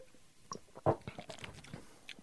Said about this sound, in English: So we've got two glasses of milk each. One has been watered down, one hasn't. Right. I'm taking a sip of one of the glasses. Me too.